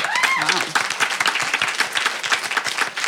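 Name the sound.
audience applause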